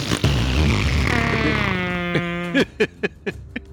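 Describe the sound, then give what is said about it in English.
A voice imitates a fart, a long buzzing, wavering raspberry that drifts in pitch like air escaping a deflating balloon, then breaks into a few short sputtering bursts at the end. “How does a wind item fart? Just goes. It just goes off like a balloon with the air.”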